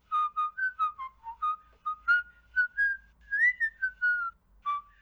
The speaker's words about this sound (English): returning to his duties, whilst whistling softly to himself and stepping in time to the tune.